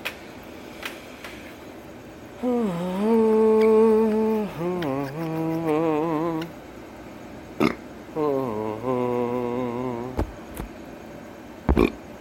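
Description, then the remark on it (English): Two long, loud, low-pitched burps, the first stretching several seconds with a wobbling, gurgling tone, followed after a short pause by a second, slightly shorter one, with faint clicks around them. “Got some good burps.”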